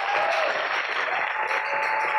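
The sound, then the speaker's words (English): A crowd applauds in a steady, dense wash of clapping that holds at an even loudness throughout, with a faint sustained tone running underneath. “I don't like the way you are clapping for him.”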